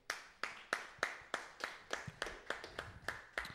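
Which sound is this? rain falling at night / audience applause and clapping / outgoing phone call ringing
audience applause and clapping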